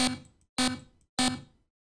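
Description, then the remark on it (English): A synthesized digital buzz made from periodic one-bit noise with a shortened period: three loud, harsh buzzes in a steady rhythm, each a bright, noisy burst with a clangy metallic tone that quickly decays before the next one starts. “Periodic one-bit noise with a shortened period. It makes a nice digital buzz or clang sound.”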